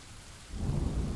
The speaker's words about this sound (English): Water poured onto the thatched roof with the force of dropped stones